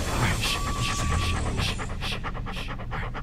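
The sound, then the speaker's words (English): An excited dog pants rapidly and steadily right up against the microphone, quick rhythmic breaths filling the whole clip, with a faint voice murmuring underneath. “God, if he can quit breathing, can you get him away from and the fucking microphone?”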